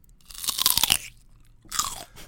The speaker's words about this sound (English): What's it called when like people eat stuff into the mic that people are super into?